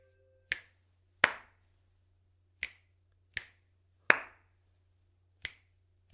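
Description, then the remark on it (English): Crisp finger snaps mixed with fuller, louder claps, played as a rhythm pattern for listeners to finish, about seven sharp hits in an uneven pattern, with a pair of snaps followed by a clap. No voices, only a faint steady low hum underneath. “It was two snaps and then a clap.”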